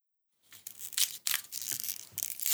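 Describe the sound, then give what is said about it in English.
Foil being torn off a champagne bottle: a run of sharp, bright crinkling and ripping bursts, fairly loud, with crunchy crackles between them and no voices. “Oh, taking off the foil. Uh-huh, crunching it up.”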